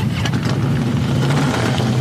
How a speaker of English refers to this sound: The roar of motorcycles could be heard around northern Colorado Saturday.